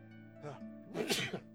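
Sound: hard sneeze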